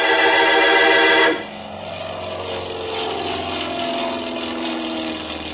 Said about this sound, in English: Well, I drove down to the San Mateo Airport, found the Cranston Flying Service building, and got out of the car and waited. It was a nice afternoon, so I stood watching some of the planes take off and land.